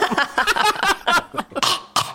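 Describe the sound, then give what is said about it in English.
A person imitates a cat hacking up a hairball: a rapid series of harsh, retching coughs and gagging sounds, loud, ending in a couple of sharp final heaves. “Coughing up a hairball.”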